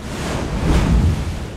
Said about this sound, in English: Wow, it sure is windy out here. The lifeguard at the beach told us the wind has a lot to do with how ocean waves are created.